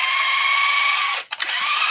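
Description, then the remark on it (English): A money gun whirs and rattles steadily as it shoots out bills, a buzzing motorized sound that cuts out briefly near the end before starting up again. “So as you hear the rattling of the money gun, I think that Jim is probably going to want to fire this.”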